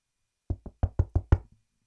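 Six firm knocks on a door in a quick, even rhythm, solid-sounding, with brief silence before and after and no voices.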